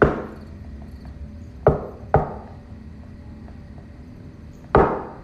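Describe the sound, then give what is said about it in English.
Three sharp knocks on a room wall, tapped with a man's hand, two in quick succession and a third after a pause of a couple of seconds, over a low steady background hum with no voices. “He then puts his hand up and begins to tap on the wall like the other guy did before.”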